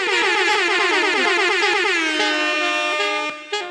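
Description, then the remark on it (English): A loud air horn sound effect blares in rapid stuttering blasts, then holds into a sustained, steady tone before cutting off abruptly, with no one speaking. “And Vice President Kamala Harris. Air horns.”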